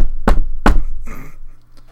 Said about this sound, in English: Knock on wood.